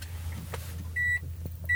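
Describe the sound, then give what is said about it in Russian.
A car engine is being shut off on a very hot summer day: a low idling rumble hums steadily while two short, high electronic warning beeps sound one after the other. “Выключил машину и понял, что погорячился.”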